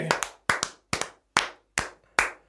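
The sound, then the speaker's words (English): Six sharp hand claps in a steady, slightly uneven rhythm, some with a quick double strike, fairly loud with no other sounds. “Why are you clapping like that?”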